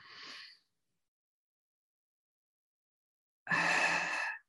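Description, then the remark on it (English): A brief breath opens, then about three seconds of silence, then a loud, airy exhale lasting around a second, during a box breathing exercise. No one speaks. “It's a trusty, wusty breathing exercise.”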